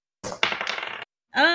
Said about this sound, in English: Well, let's see. I'll roll some dice, and we'll see how well they do it.